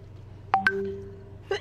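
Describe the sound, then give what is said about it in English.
A short electronic computer notification chime: two quick rising tonal blips with a brief lingering tone, then a softer single blip a moment later, clear with no talking. “That might be the notification sound”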